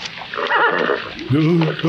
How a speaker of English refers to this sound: Well, that's a mule come kick him like that. That's what I was expecting.